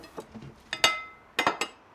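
Dishes and glassware clink together as they are gathered up: a few soft knocks, then a sharp ringing clatter, and a quick run of three bright clinks, with no talking.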